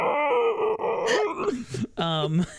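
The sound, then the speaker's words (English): A person vocalizes a drawn-out, gravelly monster roar that comes out more like a belch, groaning and wavering through several bursts, with no words spoken. “And he does, and immediately lets forth, it's supposed to be a roar, but really just sounds like a fat person's belch.”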